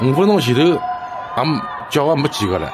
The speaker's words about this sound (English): I think the video that we have of the, it looks like Central Park in New York. It has all of the, yeah, that one, please. It has, listen to this. These are the people screaming in hunger.